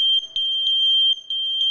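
A Kidde wireless smoke alarm blares a loud, shrill, high-pitched electronic tone, nearly continuous with a couple of brief dips, alone with no one talking.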